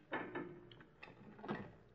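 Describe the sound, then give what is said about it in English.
A door lock being worked: a pair of quick mechanical clunks, a lighter click, then a final firm clack as the bolt seats, with no one speaking. “I guess it'd be a good idea if I locked the door again, huh?”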